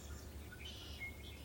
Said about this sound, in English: And you can hear birds.